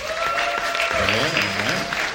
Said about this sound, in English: Clap it up if you ever smoked weed in your life before.